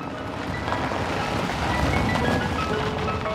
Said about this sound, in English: Oh, hey, the ice cream truck is back.